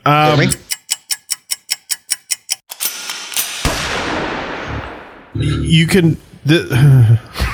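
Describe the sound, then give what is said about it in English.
A motorcycle goes by: a fast series of sharp, evenly spaced pops gives way to a loud rushing roar that gradually fades. Voices talk just before and after it. “No, there's a motorcycle that just drove by.”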